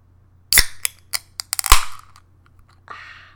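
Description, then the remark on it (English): A beer can cracks open: a few sharp metallic clicks and snaps build to a loud pop, then a soft fizzing hiss follows. No one speaks. “I just cracked open a beer.”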